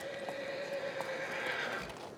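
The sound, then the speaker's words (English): Faint, scattered hoof stamps and shuffling from a tall, fidgety chestnut horse with white socks prancing in a paddock, set against a steady outdoor hum with a thin tonal whine, with no voices. “The chestnut with the white socks. Not certain how many hands, but tall, fidgety, prancing.”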